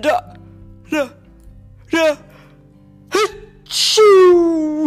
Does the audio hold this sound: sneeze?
yes